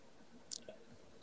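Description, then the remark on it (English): A quick sip of water: a short, bright slurp followed by a soft gulp or click, then quiet. No one speaks. “I just wanted to take a little sip of water.”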